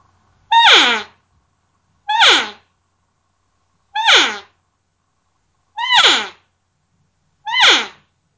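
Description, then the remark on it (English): Five loud sliding cow calls, made with lip pressure, each a short reedy cry that starts high and bends downward in pitch, spaced evenly with silent gaps and no talking. “just add a little more lip pressure to start the cow call, and then as you end the call, you just lessen your lip pressure ever so slightly, and you get that nice kind of sliding cow call that you're looking for, like this.”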